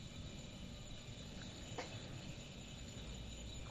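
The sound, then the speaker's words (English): A steady, continuous chorus of crickets chirping, fairly quiet and unbroken throughout, with a faint low rumble underneath and no voices. “Crickets.”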